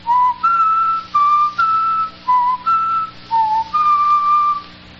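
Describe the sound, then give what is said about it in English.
A person whistles a short melodic phrase of about eight clear, separate notes written in a musical theme, fairly loud, some short and some held, with no talking. “Let me see if I can whistle those notes written in the musical theme.”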